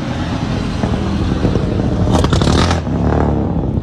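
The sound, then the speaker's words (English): A driverless Uber car's engine hums steadily as the vehicle rolls up and slows, with a brief burst of rattling, whooshing noise in the middle before the idle settles again. “No driver in the car.”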